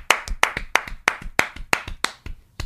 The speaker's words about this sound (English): Let us be the first to offer this round of applause for anybody who's gotten laid. A round of applause is both of us clapping, dude. 1, 2, 3.